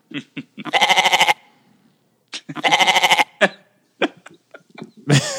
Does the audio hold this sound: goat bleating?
yes